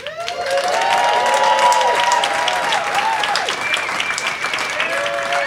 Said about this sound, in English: Totally unprompted applause